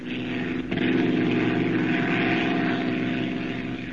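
A propeller airplane's engine drones steadily and loudly throughout, a continuous low rumbling hum with a brief swell near the start.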